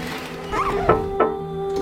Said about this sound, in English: What is that sound? Is someone knocking on the window?